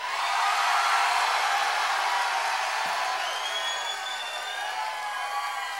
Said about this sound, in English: That counts as polite applause in my book.